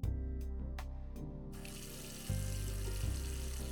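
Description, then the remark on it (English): Water runs steadily from a faucet into a sink with a low, even rush as dishes are loaded into a dishwasher, preceded by a few quick clinks and taps. A deeper surge swells partway through. “As Gladys began to load the dishwasher”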